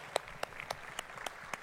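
A handful of sharp hand claps land in a steady, even rhythm, about six in under two seconds, fairly quiet, with no voices over them: a round of applause at a church for someone who came up to the front.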